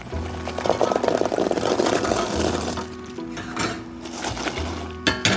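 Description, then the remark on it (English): Cranberries cooking in a pot on the stove bubble and pop, a dense run of small crackling bursts over a steady low hum, with a few sharper pops toward the end. “And she listens, for example, to the cranberries bubbling on the stove in a pot to see when they'll be ready.”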